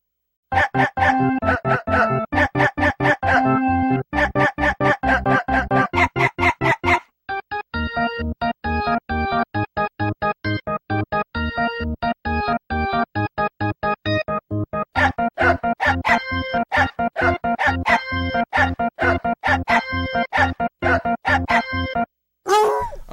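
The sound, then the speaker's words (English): A melody built from short, pitched dog barks, the Silent Hill dog song, sampled and played in quick rhythmic runs that change pitch like notes, continuing loudly for over twenty seconds with no one speaking. “Now I'm thinking about the Silent Hill dog song some more.”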